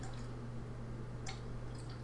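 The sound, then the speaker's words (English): A female dog laps water in quick, wet, irregular slurps, with small splashy drips over a steady low hum in the background. “Doggy's taking a drink. Yeah, she is. She's loud.”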